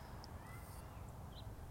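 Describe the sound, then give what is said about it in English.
A few short, faint bird chirps sound over a steady low outdoor rumble, with no one talking. “I just been chatting, but these birds are wowing. Where are they?”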